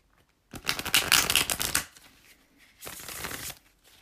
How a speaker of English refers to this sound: And when I ask the question to the cards, I like to ask before I even start shuffling, or while I start shuffling, because I want to be able to kind of meditate on that thought, on that question, while I'm shuffling.